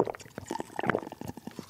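food or drink, drinking bottled water

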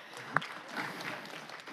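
crowd, applause

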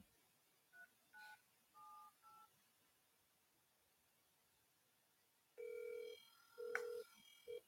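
signal or alarm, telephone number being dialed

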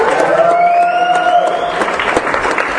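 crowd, audience clapping and cheering

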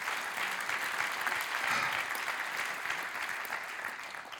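crowd, audience clapping

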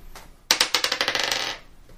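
household object, dice being rolled

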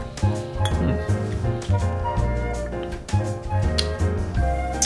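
household object, glasses clinking

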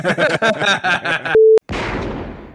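impact, gunfire

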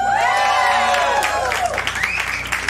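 crowd, crowd yelling and cheering

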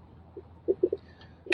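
human body sound, sneeze

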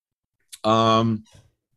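household object, squeaky chair creaking

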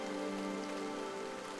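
nature, heavy rain falling

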